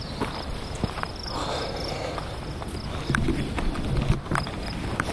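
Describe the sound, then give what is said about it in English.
Steady high-pitched cricket chirring fills the background outdoors beside a gently flowing river, mixed with soft footsteps or clopping sounds. No one speaks. “Nice to hear crickets.”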